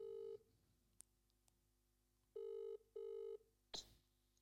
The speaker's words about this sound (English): So you're calling Dan Ed, who I've chosen from the phone, and you're going to tell him, ask him what he's worth, monetary value.